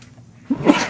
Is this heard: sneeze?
yes